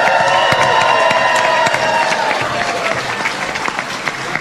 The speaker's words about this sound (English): And tonight, we win, and that's more fun. And so with that, give you all a round of applause. What a great night tonight.